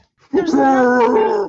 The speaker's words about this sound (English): There's nothing even for her to be barking at. I parked my car out front of the house. Yeah. And I don't usually do that. So now every time she looks out the window, she thinks that someone's here. And it's just my car every single time.